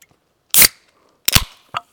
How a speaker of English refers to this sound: You guys, some ASMR as I crack open a favorite flavor of Worcester water here.